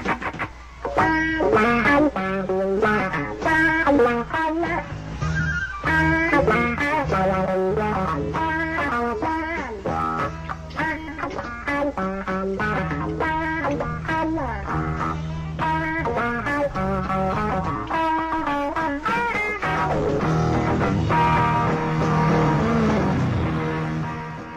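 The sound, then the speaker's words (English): Loud, gritty rock music with heavily distorted guitar plays steadily throughout, driving chords and a dense, fuzzy texture, with no voices on top. “Okay, got a little taste of that. Oh, yeah. Distortion.”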